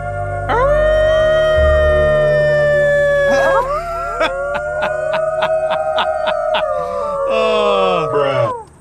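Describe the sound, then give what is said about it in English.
Long, drawn-out wolf howls rise and fall, several voices overlapping loudly, with a run of short, evenly spaced clicking pulses partway through before the howls trail off. “Let's just go back to the howl in action again.”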